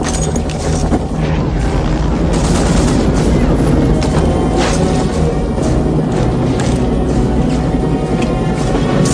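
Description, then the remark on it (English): Rapid bursts of gunfire from the ground, aimed at a helicopter, crack repeatedly over a loud, continuous low roar, with heavy booming thuds mixed in and no pause across the whole stretch. “They are shooting at the helicopter from the ground.”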